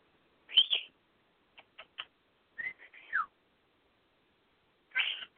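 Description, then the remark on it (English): A pet bird squeaks in a scattered series of short, high-pitched chirps and whistly calls, fairly clear, with quiet gaps between bursts and no talking. “You're the squeaker bird.”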